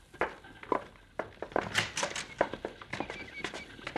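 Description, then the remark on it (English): Horse hooves clip-clop in an irregular, uneven rhythm of sharp knocks, growing louder over four seconds with a faint whinny-like tone mixed in; no one speaks. “Yeah, there's somebody coming in here, boss.”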